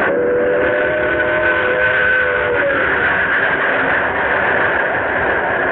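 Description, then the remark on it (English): The scheduled 11:55 train passes on time with a steady, loud rumble, while a sustained whistle or horn tone sounds over it for a few seconds before fading, leaving the continuous roar of the wheels. No one speaks. “Here's the 11:55 now. Right on time.”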